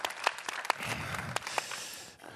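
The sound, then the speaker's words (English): A crowd claps steadily for a couple of seconds, a dense patter of many hands with a few sharper claps standing out before it fades at the end. “It's like, what do I do when people clap for my message?”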